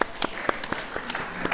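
A smattering of audience applause for an audience member, a handful of sharp, irregular claps overlapping at moderate volume for a moment, with no voices.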